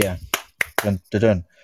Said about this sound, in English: I just like Terminator clapping.